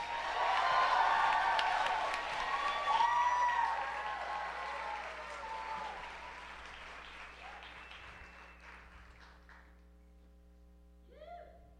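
An audience applauds a spoken word artist and storyteller being introduced, with dense, steady clapping and a few cheers, loud at first and then slowly fading out over about ten seconds, leaving a low hum.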